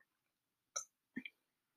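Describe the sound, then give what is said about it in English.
Two short burps from a person who had nachos for dinner, in quick succession about half a second apart, each a brief guttural gulp against an otherwise silent background. “Ooh, y'all, hold on, I got a burp.”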